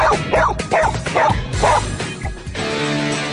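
A Border Collie named Venus barks about half a dozen times in a steady, evenly spaced run of loud, mid-pitched barks, answering the math question 3 times 2. A low background hum remains once the barking stops.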